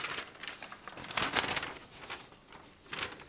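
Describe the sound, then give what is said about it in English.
Paper rustles and crinkles in a few irregular bursts, a soft shuffling with a louder flurry in the middle and another near the end, with no talking. “Stop moving paper.”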